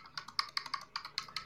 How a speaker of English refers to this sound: What the fuck is that noise? I don't know. Someone's typing up a fucking storm. That's not me.